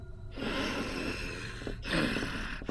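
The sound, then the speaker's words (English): Eerie, rasping breathing of an alien captain aboard a mothership, loud, drawn out in long harsh breaths separated by brief pauses, with no voices present. “An eerie breathing sound rasps.”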